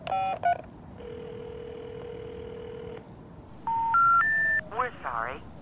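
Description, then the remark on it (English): A few quick telephone keypad beeps as a number is dialed again, then a steady two-second phone tone, followed by three rising beeps as a recorded voice begins saying the number has been disconnected or is no longer in service. “I'm calling again.”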